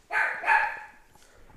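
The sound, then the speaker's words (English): Two quick, high-pitched yaps from a small, newly acquired female Chihuahua puppy, sharp, the second slightly stronger, then a faint trailing whine as the sound fades. “We just got a new Chihuahua puppy, and she thinks she runs the show, and she doesn't.”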